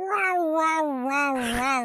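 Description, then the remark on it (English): A voice imitates an alarm with one sustained, wavering wail lasting about two seconds, its pitch dipping and rising slightly, strained and nasal, with no words. “I could be an alarm. How's this sound?”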